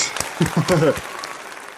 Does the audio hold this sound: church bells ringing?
no